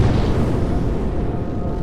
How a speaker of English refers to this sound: In the beginning, there was nothing. Which exploded.